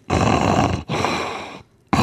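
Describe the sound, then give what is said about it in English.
A person attempts a lion's roar for a roar challenge; it comes out as a raspy, snore-like rumble: two loud, drawn-out bursts, then a third beginning after a short pause. “It sounds like you have sleep apnea.”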